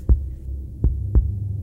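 A deep, muffled heartbeat thumps three times over a steady low hum, the last two beats coming close together like a lub-dub pulse, with no voices.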